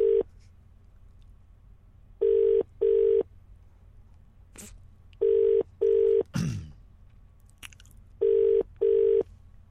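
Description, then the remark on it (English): An outgoing phone call's ringing tone: three rounds of paired steady beeps, evenly spaced and clearly heard, with a brief click and a rustle in between and no voices. “I was ringing, so he's not on the tube or anything.”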